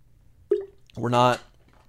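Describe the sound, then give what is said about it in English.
Someone takes a quick swig of water from a bottle: a short wet gulp, then a brief voiced sigh of relief. “Okay, hold on, water break.”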